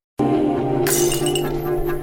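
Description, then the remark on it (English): Glass shatters loudly, a sharp crash followed by a bright scatter of tinkling shards over a low sustained rumble, with no voices. “The best one up first is glass.”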